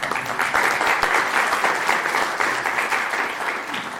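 An audience claps steadily and fairly loudly for one of the editors being thanked, many hands blending into a dense, even patter of applause that holds at the same level for the full four seconds, with no voices over it.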